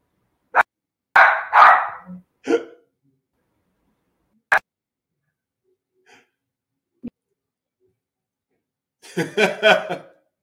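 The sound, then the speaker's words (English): A dog barks in several sharp bursts, a couple of quick single woofs and a clustered volley near the start, then a louder run of barks after a quiet stretch. “oh, I'm so sorry. It's my dog. Hold on a minute.”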